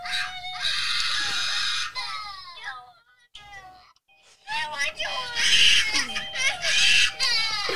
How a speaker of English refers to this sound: These are my children. These are my children crying over a babysitter. Hey. A babysitter that I still have to Venmo, my bad. But crying true. Over a babysitter as if, like, I abducted them.